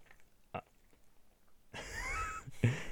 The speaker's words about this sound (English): You're chewing on the mic right now. It's like ASMR.